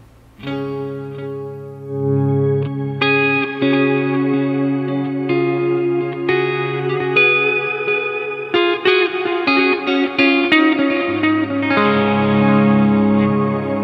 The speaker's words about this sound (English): So then we also have the... What do we have? The Boss Reverb. Boss Reverb. Digital Reverb. That's a cool pedal, which adds... Go ahead and kick that one on.